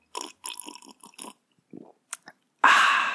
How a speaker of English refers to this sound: With me, as always, is my special guest, a small sip of whiskey. What does a small sip of whiskey sound like on a podcast? Well, it goes a little something like this.